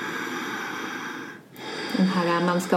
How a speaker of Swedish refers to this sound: Man kan andas ujjayi-andningen, den man använder ofta i ashtanga-yogan.